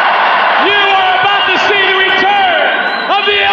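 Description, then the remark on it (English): A WrestleMania 12 arena crowd cheers in a loud, steady roar for the whole stretch, with scattered shouts and whoops rising above it while a man's voice talks over the din. “It gets the biggest pop of the night.”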